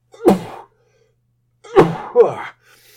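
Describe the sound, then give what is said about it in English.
A loud sneeze bursts out, followed after a pause by a second, stronger sneeze with a trailing vocal release, then quiet. “I'm about to sneeze.”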